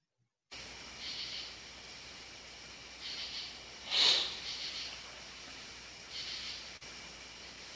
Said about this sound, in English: That was me sniffling. Sorry.